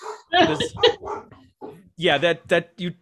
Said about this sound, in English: Oh, there's a dog.